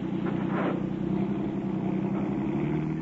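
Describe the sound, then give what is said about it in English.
A car engine runs with a steady, low rumble as the car drives forward over a man lying in front of it, holding an even loudness for a few seconds with no voices over it. “Well, we're not going to back out. We'll run over him.”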